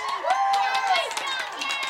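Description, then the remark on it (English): A crowd cheers and whoops loudly after Mr. Exoskelly vanishes in a puff of smoke at the end of his act, many overlapping voices rising and falling together, with scattered claps throughout, steady for the whole stretch. “The crowd went wild.”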